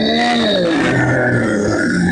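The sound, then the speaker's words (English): A voice imitates a large masked creature groaning in pain after an arrow goes through the eye hole of its mask: one sustained, low, rough grumble with wavering pitch that dips and rises, loud and continuous for about two seconds, with no words. “It grumbles in pain and holds a big arm hand up to the arrow.”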